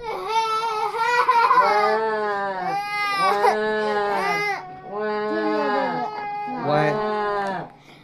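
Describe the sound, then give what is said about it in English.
Loud, exaggerated sobbing and wailing, apparently voiced by people imitating crying alligators: four long, tuneful howls that rise and fall in pitch, separated by short breaks. “And the sound of their sobbing could be heard for miles.”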